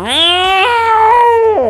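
A single long, drawn-out domestic cat meow, loud, with a whiny tone that steps up in pitch partway through before dropping off at the end. No one talks over it.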